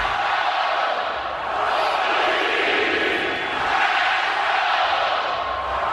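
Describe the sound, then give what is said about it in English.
A huge stadium crowd of Hokies fans does a cued 'stadium yell' together, one sustained, loud roar of countless voices, holding steady for several seconds with slight swells and no pauses. “Go stadium yell.”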